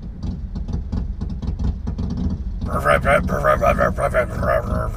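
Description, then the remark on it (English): A motorcycle engine idles with a deep, steady rumble, its throttle blipped again and again in uneven surges; partway through, muffled voices rise over the engine noise. “Dude, you don't have to keep revving it like that. It's not going to die on you.”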